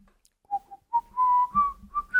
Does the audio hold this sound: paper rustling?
no